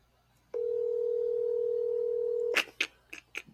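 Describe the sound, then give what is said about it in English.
A steady, single-pitched mobile phone ringing tone sounds for about two seconds on speakerphone, then cuts off into a few short, sharp clattering bursts. “Mine didn't ring. Mine was just silent until it ended the call.”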